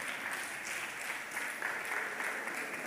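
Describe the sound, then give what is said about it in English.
An audience claps steadily as the preacher asks those whose pain has left to clap, a dense wash of many hands with continuous, even applause for the whole stretch, with no voices breaking through. “You see all of those people clapping.”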